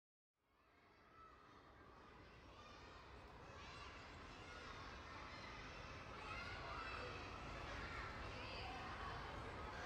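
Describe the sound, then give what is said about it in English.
A busy crowd of children shouting, laughing and chattering at a school, a dense, continuous din that swells slightly and stays loud throughout. “So much has changed, but the laughter and shouting from the kids brought some familiarity to the school.”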